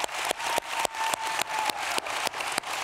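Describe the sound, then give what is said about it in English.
A church audience claps for their pastor during a morning service in a steady, quick rhythm, with about ten sharp unified beats over a continuous wash of scattered applause and a faint sustained tone underneath; no one speaks. “Come on, clap for your pastor, church.”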